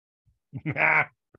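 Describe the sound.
A single wavering goat bleat, imitated by a human voice, rings out fairly loud for about half a second, with a couple of faint soft noises around it.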